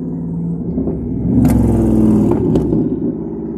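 A loud car engine rumbles and revs up hard, its pitch climbing as it roars past, with a couple of sharp bursts from the exhaust before the sound eases off slightly.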